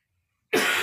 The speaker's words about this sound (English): Sorry about the plague cough.